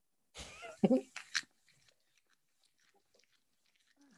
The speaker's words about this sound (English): Cat, this is cat eating fish.